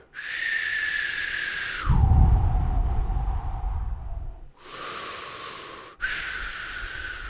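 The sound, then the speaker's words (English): A person imitates ocean waves with their mouth: airy, whistling tones give way to a loud, breathy whoosh with a low rumble, then two shorter whistling bursts follow. No speech. “That should sound just like the ocean.”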